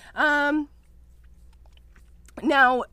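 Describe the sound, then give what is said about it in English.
A person imitates a horse with two short, loud, whinny-like vocal bursts, each wavering in pitch, separated by about two seconds of near silence. “So here's some more horse noises.”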